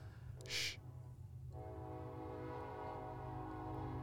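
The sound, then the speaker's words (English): A passing train rumbles steadily with a low, continuous roar, while a brief, bright burst of its horn sounds near the start before the droning rail noise carries on. “I'm sure the mics are picking up the trains.”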